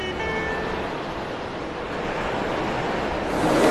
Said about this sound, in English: The sea is wild here. Nowhere else on German coasts do the waves break with such force.